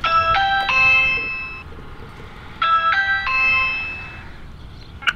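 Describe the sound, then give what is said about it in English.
A doorbell at the door of New Heaven Christian Church on Division Street rings with a short melodic electronic chime, its tune of several tones played twice in a row, fairly clear over low background hum, ending with a brief click. “while I'm walking up and down Division Street and knocking on doors and ringing doorbells of spaces that have churchy names.”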